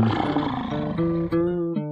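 A loud lion roar with a deep, rumbling growl that drags on for about two seconds, its pitch shifting slightly before it cuts off, with no one talking.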